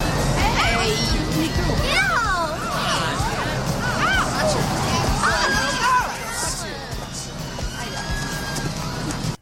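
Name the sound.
crowd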